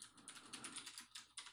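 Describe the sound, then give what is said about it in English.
Rapid keystrokes clatter on a computer keyboard as someone types the word "counterculture" to look up types of coffee, a quick irregular run of crisp clicks with no voices present. “Can you guys hear my keyboard when I type counterculture?”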